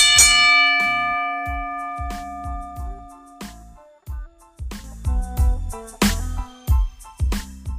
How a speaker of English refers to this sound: Let's get this show started. Ring the bell.